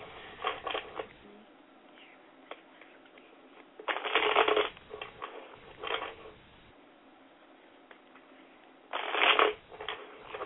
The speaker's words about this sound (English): Okay, as I'm shuffling the cards, okay, I want you to call upon your angels, and I want you to ask them to reveal to you what it is you need to know at this time, okay?